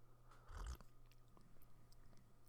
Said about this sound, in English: Sorry, I had to take a sip of coffee there.